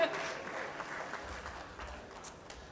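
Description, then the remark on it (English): An audience claps steadily, a soft, dense patter of many hands with a few sharper claps standing out, holding at an even, fairly quiet level throughout. “clapping.”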